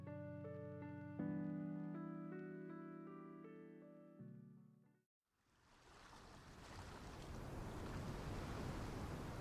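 water splashing

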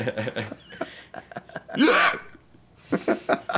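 hiccups

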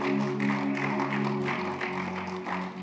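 audience clapping

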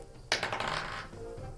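dice being rolled

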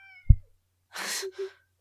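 cat meowing loudly

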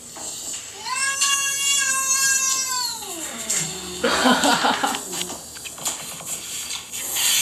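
cat meowing and caterwauling

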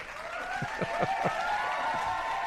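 small group clapping

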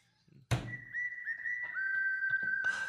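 whistle blown

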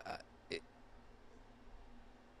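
burp

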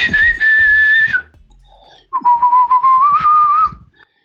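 person whistling a tune

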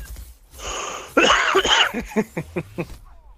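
coughing fit

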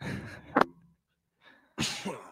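cough

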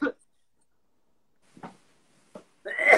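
man coughing

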